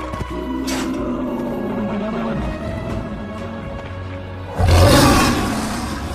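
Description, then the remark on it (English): A lion roars as it pounces on its prey, a deep, sustained rumble that swells into a sudden, louder burst near the end, powerful, with no voices present. “This is a pouncing roar of the lion as it launches itself on its prey.”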